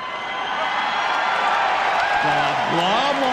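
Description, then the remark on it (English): A big concert crowd roars in a steady, loud wash of cheering, and toward the end individual voices rise above it with high, wavering whoops and shouts. “Yeah, see, you would think from the big cheer that it was the end.”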